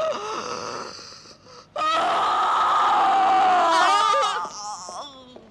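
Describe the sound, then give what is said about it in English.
A harsh, guttural scream rings out, swelling into a long, sustained wail with a heavy echo and an unnatural, electronically processed tone, parts of the tape slowed down; loud, with no talking. “Horrible scream that is just with echo. Going on and on and with echo. And it's, I think it's electronically processed, too.”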